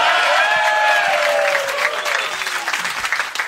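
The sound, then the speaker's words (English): A loud, sustained round of applause from a crowd, dense clapping with a few cheers or whoops rising over it early on, easing slightly toward the end. “Because I'm an unassuming woman, I make a surprising joke that will get an enormous laugh followed by a round of applause.”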